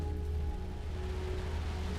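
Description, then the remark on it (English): Steady rain falls in a constant, even hiss, accompanied by a low droning hum and a faint tonal whine underneath, with no voices present. “Oh good, now it's raining.”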